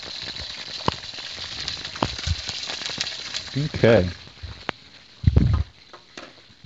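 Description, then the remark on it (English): A couple of chicken breasts are dropped into warm oil in a skillet over about medium heat and sizzle, a steady hiss peppered with sharp crackles and pops, while a voice briefly speaks over it. “Ooh, I can hear that sizzling.”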